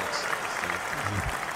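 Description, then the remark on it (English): A burst of crowd applause, a dense steady patter of many hands clapping at once, fairly loud and brief, with a faint voice briefly breaking through near the end. “oh, we got applause.”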